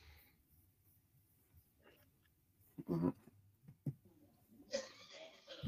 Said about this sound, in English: So you got somebody okay back there? I hear somebody coughing up a lung. That's just my roommate. He's all right.